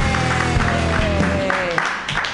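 An audience claps wildly, a dense, steady wash of many hands at full volume for a couple of seconds, with cheering voices rising above the applause.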